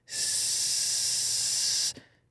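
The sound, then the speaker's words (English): A person makes a long, steady hissing sound with their mouth, imitating a snake, lasting nearly two seconds before cutting off abruptly, fairly loud with no talking. “I'm going to be a snake.”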